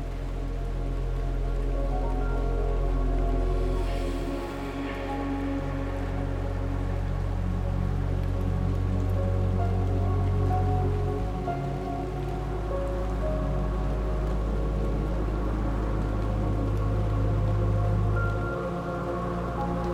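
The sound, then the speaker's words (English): Steady rain patters onto the water of a swimming pool, a continuous wash of small splashes with a low rumble beneath, unchanging throughout with no voices. “Relaxing Raindrops in the Pool”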